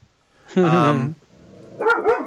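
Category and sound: animal, dogs barking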